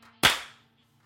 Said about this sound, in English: Let's clap. Here we go. 3, 2, 1.